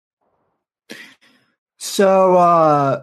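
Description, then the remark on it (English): A short breathy burst, then one loud nose blow that turns into a sustained honking buzz, falling slightly in pitch for about a second, with a single spoken word near the start. “I got to blow my nose real quick.”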